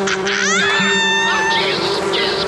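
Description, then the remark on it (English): A loud, continuous buzzing drone like a swarm of Africanized bees attacking a man, with a whiny rising and falling tone layered over it partway through, steady from start to finish. “Buzz, bees, get him. He wants to keep us apart. Get him, my pretties.”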